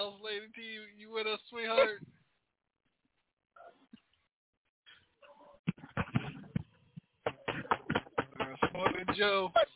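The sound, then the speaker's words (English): After a brief voice and a pause, rapid, loud knocking on a door breaks out in two dense bursts of sharp, closely spaced raps, sounding insistent. “That's what he knocking on the door.”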